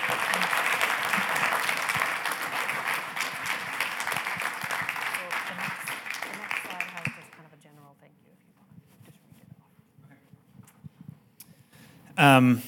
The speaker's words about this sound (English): Putting him on the spot. Let's give him a round of applause for all of his hard work.